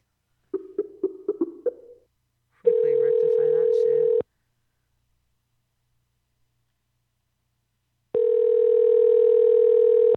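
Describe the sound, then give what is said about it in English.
A telephone busy signal on a call to a woman's number while she is still on the phone: after a quick run of short blips, a steady electronic tone sounds twice, each lasting a couple of seconds with a long silent gap between, loud and clear. “Okay, so her phone number is busy.”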